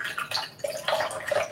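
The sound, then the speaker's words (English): Broth pours steadily with a gurgling, splashing sound, fairly loud, with bubbly surges over a second and a half and no talking. “Meanwhile, I'm gonna get my broth over here.”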